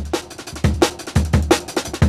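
A punchy breakbeat drum loop from a tracker-music sample pack plays on its own, with booming kicks and crisp snare cracks in a fast, syncopated pattern that repeats roughly every two-thirds of a second.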